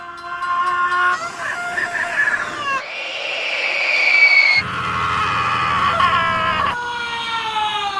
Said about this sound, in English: What is this? It's a screaming train hype train.